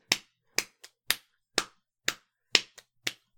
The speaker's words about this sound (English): I can keep a beat. Cool. I'll just bang on something. Just, like, hit your leg with your hand.